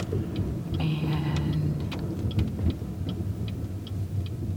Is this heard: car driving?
yes